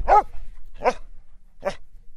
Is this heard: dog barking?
yes